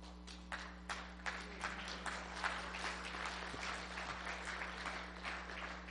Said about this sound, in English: Well, since you clapped, I'll quit.